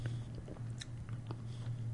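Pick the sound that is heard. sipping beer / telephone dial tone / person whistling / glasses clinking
sipping beer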